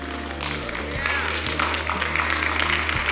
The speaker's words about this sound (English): Thank you so much for that golf clap. That makes me feel so much better.